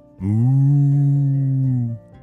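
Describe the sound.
A single long, steady moo from a person imitating a cow in front of cows, held for nearly two seconds and fairly loud, with no other talking.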